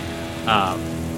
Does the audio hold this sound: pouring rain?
yes